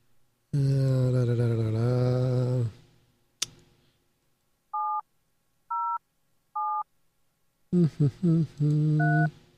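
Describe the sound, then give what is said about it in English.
A telephone ringing tone on a phone call sounds in three short, evenly spaced beeps, clear but fairly quiet, after a click. Voices are heard before and after the beeps. “It's ringing.”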